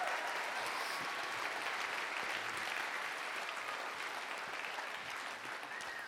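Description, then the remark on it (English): A church audience claps steadily and loudly for its worship leaders, a dense wash of many hands that holds its level throughout before easing off slightly at the end, with no one speaking over it. “Give them a round of applause and thank them.”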